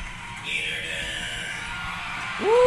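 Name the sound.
crowd cheering and whooping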